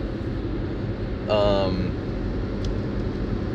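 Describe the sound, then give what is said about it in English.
A car driving through bumper-to-bumper stop-and-go traffic on a Friday, the driver slamming on the brakes, heard from inside as a steady low road and engine rumble, with a brief high, tonal squeal partway through. “I did a Taco Bell review on the Volcano Taco as I'm slamming on my brakes because it has been bumper to bumper.”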